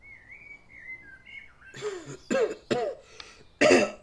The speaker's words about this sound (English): You're beginning to sound like your grandfather with all that coughing, Gemellus.